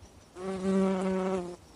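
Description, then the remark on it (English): A bee buzzes near a flower in one steady, droning burst lasting just over a second, its tone swelling slightly in the middle before cutting off, with no voices around it. “After landing, the bee puts her pointy proboscis into the nectaries and slurps up the nectar with her long tongue.”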